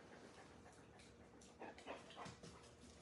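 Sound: dog whimpering and panting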